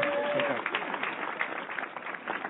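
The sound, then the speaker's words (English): A small in-studio crowd claps and cheers steadily throughout, fairly loud, with a few voices whooping over the dense patter of hands as a guest is welcomed. “This could be the first time that the in-studio crowd out-louded the actual sound to you.”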